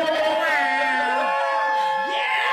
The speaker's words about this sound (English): You have 10,000 people cheering in unison? It's only 10 because they roped off the top 2,000.